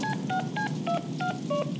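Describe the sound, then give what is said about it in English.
In the Deadpool video game by High Moon Studios, Deadpool phones Nolan North from Wade's apartment: six short, evenly spaced telephone keypad tones beep in quick succession, each a steady dual-pitch blip, clear over a faint low background hum. “personal favorite interactions in the game comes early on in Wade's dumpy apartment, when Deadpool talks with, wait for it, Nolan North, on the phone, about taking the voiceover job for the game he just convinced High Moon Studios to make.”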